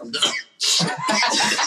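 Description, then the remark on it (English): A stifled, internal sneeze: a short breathy burst, a brief pause, then a longer strained, hissing burst with throaty sputtering, fairly loud, with no talking over it. “Ew, is that an internal sneeze?”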